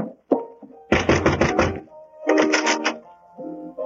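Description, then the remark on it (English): Two quick bursts of knocking on a wooden cabin door, each a rapid run of four or five sharp, loud raps, separated by a short pause, over a faint steady background tone. “I'll go up and knock on the door here.”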